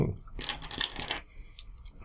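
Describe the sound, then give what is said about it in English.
Several damage dice clatter across a hard tabletop in a quick burst of sharp clicks and rattles, settling with a few lighter taps and a faint ringing tail. “So that is roll your damage dice twice and take the best one.”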